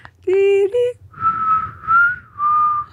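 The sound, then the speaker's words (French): A person whistles a short, simple tune of a few sustained, slightly wavering notes, after a brief voiced tone at the start. “Je suis pas comment siffler.”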